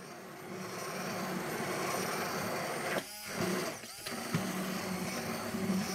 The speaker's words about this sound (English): the fact that you're using an immersion blender that fits perfectly and kind of encapsulates those ingredients first is that the oil is able to slowly be incorporated to the other ingredients.